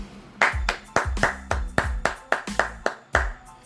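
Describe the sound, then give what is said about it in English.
A steady run of loud, sharp hand claps, about ten in under four seconds, landing in an even rhythm with low thumping tones beneath each clap and no voices. “I got the clap.”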